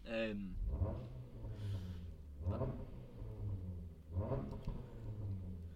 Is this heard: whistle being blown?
no